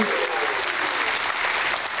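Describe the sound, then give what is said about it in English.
An audience claps steadily, giving a hand clap for God one morning: a dense, continuous wash of many hands with no pauses, loud and even throughout. No voice rises above the applause. “If you believe it, give Him a hand clap this morning.”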